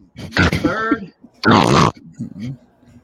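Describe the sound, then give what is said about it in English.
A person makes two loud, harsh snorting grunts in imitation of a pig, each burst about half a second long, followed by a softer rumbling grunt. “No, and we got the pig is back. A little snort.”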